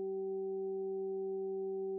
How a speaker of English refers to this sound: 768 hertz. These are healing solfeggio frequencies. They correspond to the throat or Vishuddha chakra.